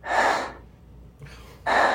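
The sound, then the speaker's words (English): A voice imitates the heavy, loud breathing of a woman seated nearby during quiet moments of a movie: a harsh, noisy exhale, a pause, then a softer inhale leading into another forceful breath, with no talking. “Plus, during, like, the quiet moments of the movie, I could fucking hear her ass. I could hear her breathing.”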